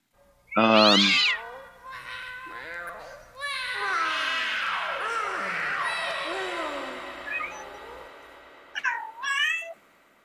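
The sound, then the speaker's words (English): A cat meows loudly: a sharp cry near the start, then a long, wavering, drawn-out yowl, and finally a shorter meow at the end. “Cat? Is that what we're getting from? Cat's out of the bag.”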